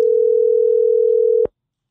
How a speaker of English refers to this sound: No, because the phone's ringing, so I thought it was like...